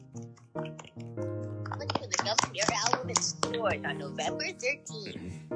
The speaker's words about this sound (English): Let's clap that up.